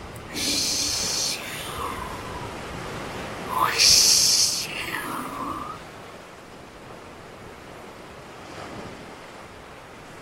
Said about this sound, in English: Now you're going to hear some waves.